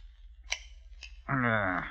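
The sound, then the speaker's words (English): Two crisp metallic snips of shears, about half a second apart, cut through near-silence before a person starts talking, as the shears clip small edges off gold coins in a workshop. “Here, they divested themselves of garments necessary to robbing on the road, placed them in a trunk, took out a pair of shears, and went to work.”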